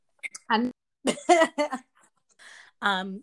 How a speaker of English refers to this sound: now I'm doing clearing my throat.